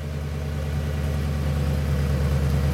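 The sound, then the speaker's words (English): A Dodge Lancer's engine idles with a steady, low, throbbing rumble after pulling up outside a plane warehouse in Chelsea, Massachusetts, in summer 1963, driven by a Hasbro product developer; even loudness for a few seconds, no voices. “It's summer, 1963, and in Chelsea, Massachusetts, a Dodge Lancer has just pulled up outside a plane warehouse.”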